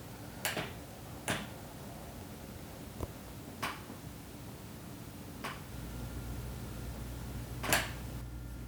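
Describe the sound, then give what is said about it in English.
Six or so sharp, isolated knocks land at irregular intervals, fairly soft, over a steady low hum and background hiss with no one speaking. “Can you hear those knocks?”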